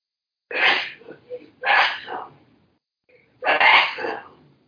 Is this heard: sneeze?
yes